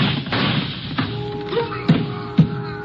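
A few muffled gunshots on a pier land as dull, low thuds, the last two sharpest and about half a second apart, over a steady low rumble with a faint hum.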